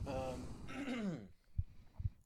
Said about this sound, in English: sorry, I just cough and phlegm. I hope that's not going to be a pain in the ass to edit. I'm going to purposely make it louder now.